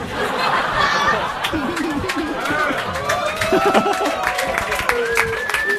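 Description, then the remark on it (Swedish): An audience claps steadily throughout, mixed with scattered laughter and crowd chatter, while a voice speaks over the noise at a fairly loud, even level. “Vad är det ni applåderar åt egentligen?”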